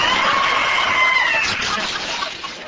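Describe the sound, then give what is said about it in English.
A loud, shrill, high-pitched scream from a man disguised in a dress, grabbed at a freezer in a store's frozen foods department, holds for about a second and a half, then fades out into a noisy, bustling background with no speech. “That high-pitched scream didn't fool me, for underneath the dress was Baby Giles Drosbeck, notorious food heister.”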